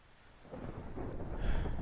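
Steady rain hisses across a wide band while a low rumble of thunder swells beneath it, growing louder over the two seconds. No voices.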